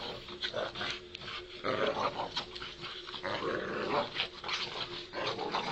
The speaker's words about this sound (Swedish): Just det här klippet tycks inte handla om en kamp på liv eller död. Vissa kanske skulle hävda att det bara är en helt oskyldig och naturlig lek. De här hundarna kämpar och drar i varsin ända av en blå repstump med knutar på. Ingen av dem vill ge upp.